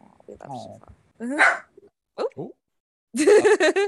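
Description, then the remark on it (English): A small dog yaps in the background in a few sharp, high-pitched bursts, with the last run of barks coming quick and loud; a brief low voice-like sound comes before them. “And that's Jaja in the background saying I love her too, barking her love language.”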